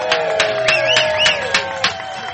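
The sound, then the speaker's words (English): A crowd of Gumption County residents cheers and applauds as mayor Joe Souchere is introduced on a Monday, in a steady, dense wash of clapping, with sharp louder claps popping through and a few rising whistles over the noise. “What a crowd for a Monday.”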